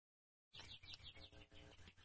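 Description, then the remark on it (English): Birds sing outside the window in a busy run of quick, repeated chirps and tweets, fairly faint, over a steady low background rumble, with no talking. “so if you hear loud birds in the background”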